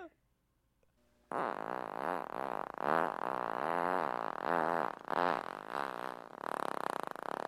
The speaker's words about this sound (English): Here's what? Fart number one.